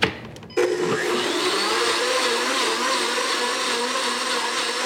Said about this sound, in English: I'm gonna measure about a cup of it. Add this gradually with the blender on. Don't be concerned if chocolate flies all over your kitchen. That's normal.